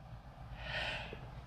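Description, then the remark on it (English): A single quiet sneeze, a brief breathy burst that swells and fades in under a second, heard alone against a low background rumble. “Bless you. Thank you.”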